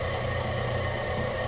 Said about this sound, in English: The smell of fresh ground beef coming out of there is really, there's no smell like it. It never smells better than when it first come out of the grinder. And just that sound of that motor humming means like, yeah, like everything's happening here.